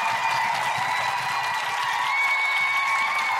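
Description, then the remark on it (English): An audience at a comedy show in Canberra claps steadily throughout, a dense, continuous wash of hand claps that holds at an even loudness for a few seconds, with a faint crowd murmur blended in. “If you would like it to be a revolution that burns the patriarchy to the ground, follow by an orgy, clap now!”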